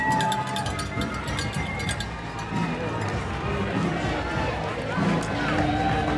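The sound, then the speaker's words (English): Marathon spectators cheer as people hype up the crowd, a loud, continuous roar of overlapping voices and shouts, with scattered bright metallic clinks mixed in, holding steady throughout. “People hyping up the crowd.”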